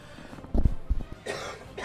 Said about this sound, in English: Cough. All yeah, right. This is a fucking asthma.